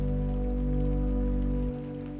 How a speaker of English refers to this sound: The cold water hitting your skin gives you goosebumps, sending shivers down your spine. You've come prepared with your raincoat, so the rain isn't a burden.